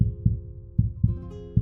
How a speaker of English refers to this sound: No, actually in your ears. You can hear a heartbeat. And it's in rhythm with yours, but it's not yours. It's coming from somewhere outside of you.